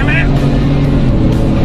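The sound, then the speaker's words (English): A truck and a car, a Mustang, accelerate hard in a roll race, their engines roaring loud and steady, with a voice briefly audible over the din. “Oh, that truck is fast!”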